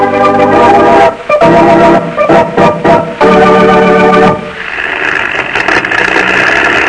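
An old propeller airplane engine drones loudly and unevenly, sounding weak, its harmonic roar cutting out and surging in bursts before settling into a steadier, rougher hum.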